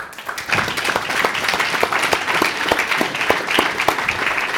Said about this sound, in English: And of course, although we pay them for their professional services, a big round of applause also for our band.